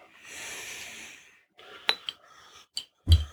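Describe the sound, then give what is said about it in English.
Beer pours into new glasses with a steady, foamy hiss for about a second and a half, then stops, followed by a few sharp glass clinks and a soft thud as a glass is set down. “Look at that pour on these new glasses.”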